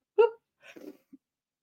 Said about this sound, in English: Oh, I'm going to sneeze. I'm so sorry.